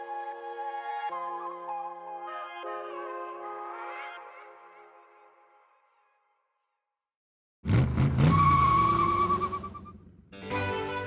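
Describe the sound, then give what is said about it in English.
In an eBay Motors advertisement, a few seconds of tonal music fade into silence, then a loud burst of car engine roar and screeching, squealing tires burning rubber for about three seconds, followed by another brief roaring burst. “with eBay Motors, you're burning rubber, not cash.”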